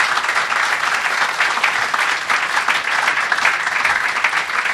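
An audience applauds steadily for about five seconds, a dense, even wash of many hands clapping at once with no voices over it and no letup.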